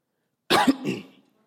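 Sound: cough and throat clearing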